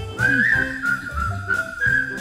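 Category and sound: human body sound, whistling a tune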